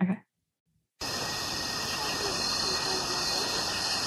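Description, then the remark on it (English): After a brief voice fragment and a second of silence, a steady high-pitched chorus of crickets chirps on a summer night, continuous and even, layered over a loud broad hiss that runs to the end. “Oh, I hear crickets. It makes me just like want a nice summer night.”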